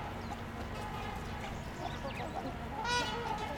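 One of two trumpeter swans walking alongside gives a single loud, nasal honk close by near the end, after a stretch of faint chirps from house sparrows and a black-capped chickadee over steady outdoor background noise.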